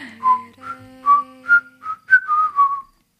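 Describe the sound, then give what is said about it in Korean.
Someone whistles a short, clear melody, a series of bright sustained notes that glide between pitches, with a soft low backing tone underneath and no talking. “제가 부는 휘파람 소리가 광고에도 나왔어요.”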